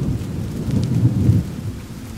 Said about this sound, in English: There is a steady rain overhead and deafening thunder.